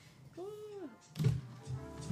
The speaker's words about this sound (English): So yeah, I'm going to open this door really quick because it's hot.